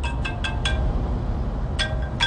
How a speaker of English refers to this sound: Of course, my phone will go off while I'm recording.